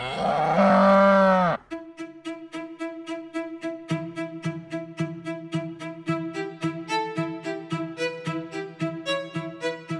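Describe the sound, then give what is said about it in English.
A single loud cow moo rings out for about a second and a half, then gives way to a steady, rhythmic run of plucked, tonal music. “So look out for those flying cows.”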